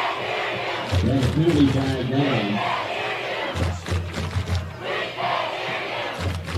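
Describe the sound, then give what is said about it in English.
A loud Smyrna football stadium crowd yells and roars continuously at a night game, with swelling shouts and chanting voices blending into a dense, rowdy wall of noise that never lets up. “As the Smyrna crowd is rowdy here tonight.”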